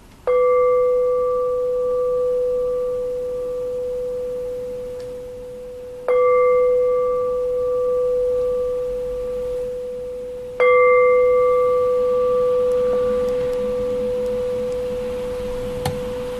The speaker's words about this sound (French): Où la cloche sonne, ce serait vraiment, tu sais, puis quand on arrive là à un moment de transition, là, de la fin du cours, ça serait vraiment une belle place pour être habituel, là, tu sais.